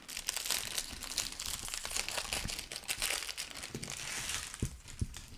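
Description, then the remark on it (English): A packet of Tim Tam biscuits is torn open, its plastic crinkling and rustling steadily for several seconds, with a few sharper crackles near the end. “So I bought some Tim Tams earlier today, and I'm going to crack that packet right now, and I'm going to Tim Tam Slam two beers at once, basically.”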